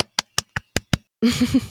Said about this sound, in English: Little applause.